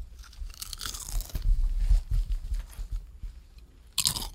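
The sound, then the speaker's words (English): Loud crunching of Doritos tortilla chips being chewed, a steady run of crisp, crackly bites with no talking, ending in a sharp bright crackle. “You're crunching. Yeah, crunch. What'd you get? You got Doritos.”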